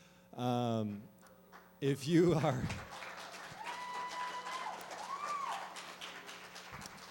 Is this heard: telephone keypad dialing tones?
no